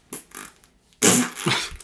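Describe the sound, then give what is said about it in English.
A loud, wet, spluttering raspberry blown with the lips imitates a fart, lasting under a second after a couple of quieter breathy puffs, with no talking. “Just stop doing farts.”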